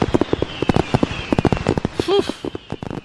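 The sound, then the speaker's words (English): Rapid, irregular crackling pops in a dense burst of fireworks going off, with a brief tonal whistle partway through. “Oh, sorry, the fireworks are still going off.”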